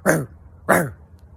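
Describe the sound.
A person gives two short, loud barks like a dog, one right after the other about half a second apart, with no talking around them.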